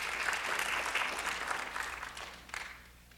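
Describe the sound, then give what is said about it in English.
An audience claps steadily, a dense patter of many hands that peaks early, surges once more briefly, then thins out and fades away without any voices. “Yeah, you can clap.”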